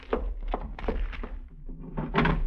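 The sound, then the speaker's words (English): In a cabin, a small package box is shut with several quick thumps and knocks, then slipped into a desk drawer that slides with a wooden scraping rush near the end. No one speaks. “Slip it into the desk drawer.”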